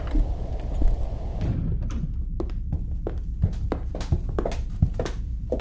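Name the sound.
door opening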